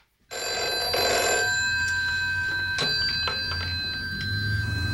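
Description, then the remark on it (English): An old-fashioned telephone bell rings continuously as a woman calls the caretaker of an apartment building, a bright, metallic trill held steadily for several seconds, fairly loud, with no voices. “She rings up the caretaker to go and check on Tony in the apartment”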